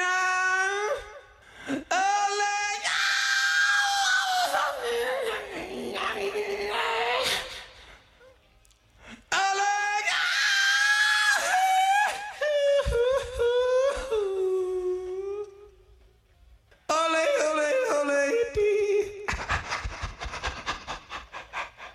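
A loud, high rock vocal wails and yodels in long sliding, cracking phrases, three bursts separated by short gaps, over a thin band backing as the song fades.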